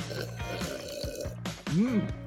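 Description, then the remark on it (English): Someone sips kombucha from a can: a few short, wet gulping sounds in an uneven rhythm over a low background hum, followed by a brief voiced hum that rises and falls in pitch. “I'm sipping on one right now. Let's see if you guys can guess it.”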